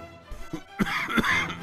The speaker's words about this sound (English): I wasn't coughing the whole show, now I'm coughing like a maniac. Singing death metal.